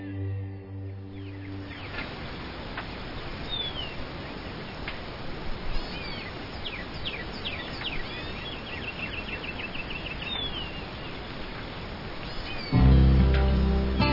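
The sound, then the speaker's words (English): A chorus of wild birds at Joshua Creek Ranch chirps and calls, many overlapping short notes over a steady hiss of outdoor ambience, briefly bookended by tonal music at the start and end. “You're listening to the critters, the wild birds at Joshua Creek Ranch that love the habitat and call it home.”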